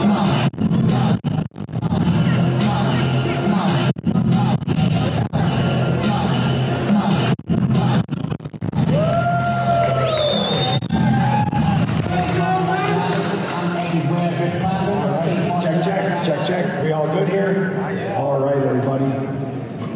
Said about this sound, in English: we're going to welcome to the stage our newly elected board chair. Let's make a round of applause, make some noise.